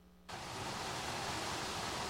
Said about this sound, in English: If you can't see that real good, it's a busted fire hydrant. And it's shooting over two stories high. It's not a water fountain that barely trickles in the hallway of a school. It's a fire hydrant blasting gallons of water freely.